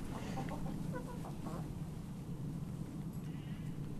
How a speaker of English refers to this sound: I can hear pigs snuffling around eating. I can hear hens probably stealing the pigs' nicking the pigs' food.